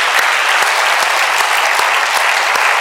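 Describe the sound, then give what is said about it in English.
An audience applauds steadily to thank Jesus, a dense wash of many hands clapping at a constant loud level with no voices breaking through, lasting the full few seconds. “So let's give Jesus a good round of applause and thank him for being so good to us.”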